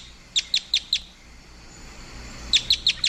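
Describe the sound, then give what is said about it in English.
Appalachian crossbill type 1 calls: two bursts of four quick, sharp, high chip notes each, evenly spaced and clear, separated by a pause of about one and a half seconds, with no voices. “That's the Appalachian crossbill, right?”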